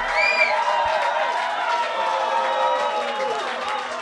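A loud, steady wash of crowd applause and cheering lasts the whole few seconds, with shouts and a few high whistles rising above the dense clapping.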